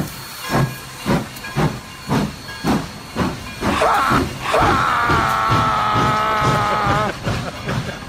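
A steam locomotive chugs along with steady, rhythmic hissing puffs of steam, then a long, loud whistle blast sounds over the continuing chuffs before fading back to puffing.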